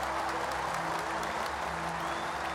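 A large crowd at a match applauds steadily as a player's score climbs, a dense wash of many hands clapping at once with a faint murmur beneath, holding at an even, moderately loud level throughout.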